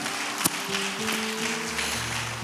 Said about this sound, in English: Please give everyone that has spoken a round of applause.